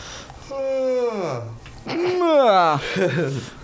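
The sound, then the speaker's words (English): Someone yawns audibly, a drawn-out voiced groan whose pitch slides downward, followed by a second long, wavering yawn. Both are fairly loud, with no words spoken. “Yawning is contagious.”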